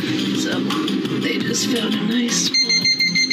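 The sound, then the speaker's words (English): A rapid run of short, shrill electronic alarm beeps from a snake detector, about four or five in quick succession, cuts in near the end after a stretch of busy, muffled voices and background noise. “That was the snake detector. Did you hear that?”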